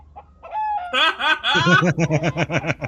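A loud rooster crow rings out, then breaks into a quick run of about a dozen rhythmic, cackling pulses. No speech is heard.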